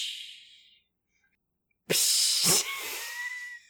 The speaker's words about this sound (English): Those were more gentle waves.